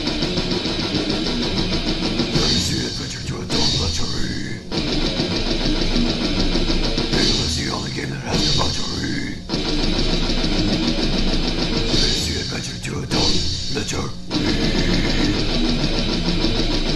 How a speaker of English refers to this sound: an MP3 recording of the author's thrash metal theme song to the game, also called Fatal. Amazing. So let me play a clip. I'm going to play a little clip of this. It is pretty amazing.